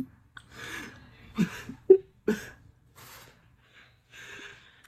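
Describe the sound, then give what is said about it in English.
A clogged nose being blown several times, with about five breathy, rasping nasal bursts separated by short pauses over a faint low hum. “makes fun of me for how I blow my nose.”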